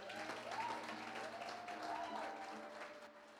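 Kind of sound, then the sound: crowd, audience clapping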